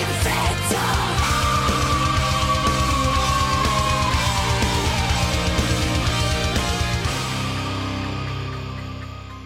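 A long, high, strained vocal shriek slowly falls in pitch over dense, loud metal with pounding rapid drums and heavy orchestral layers, then the music thins and fades near the end.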